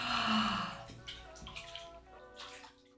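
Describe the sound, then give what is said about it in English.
A thick wet sloshing as a body slides down into dense, jelly-textured bath water, made by pouring a sachet into a bath full of water, followed by quieter squelching shifts and a soft breathy vocal sigh. “You pour a sachet into a bath full of water, and the entire thing becomes the kind of texture you might get if you smushed loads of jelly between your hands.”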